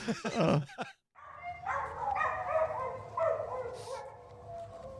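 A dog barks in a quick cluster of sharp bursts, then after a brief pause breaks into a long, wavering whine and howl, fairly loud.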